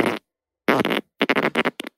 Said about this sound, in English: Yeah, did he put the microphone in his ass? Yeah, he really went for it. His farts sound pissed.